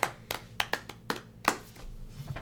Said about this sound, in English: I won't stop clapping.